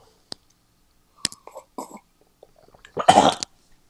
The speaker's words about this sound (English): It's a giant sip.